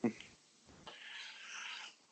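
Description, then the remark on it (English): A small dog makes close, breathy noises right up against the microphone, starting with a brief sharp sound and followed by about a second of snuffling, huffing breaths. “This little dog is over here by my ear, and he's like, "Yo, I don't feed him dinner, or whatever."”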